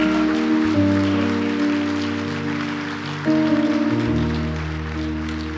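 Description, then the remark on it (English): An audience claps steadily in a dense, rain-like patter that fills the whole clip, over sustained keyboard chords that shift a few times underneath. “Come on, let's clap. Let's clap.”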